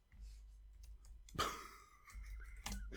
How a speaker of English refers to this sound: I'm watching your grandmother henpeck at a keyboard.